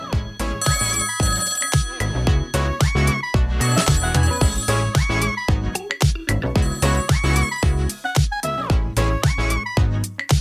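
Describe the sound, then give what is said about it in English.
A telephone ringtone plays for about ten seconds, a loud, steady electronic melody of bright repeating tones with rhythmic accents, continuous, with no voices over it. “Phone's ringing.”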